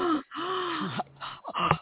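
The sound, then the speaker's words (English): A dramatic vocal gasp, loud, with a voiced, pitch-bending outbreath following the sharp intake, then a second shorter gasp near the end. “Gasp.”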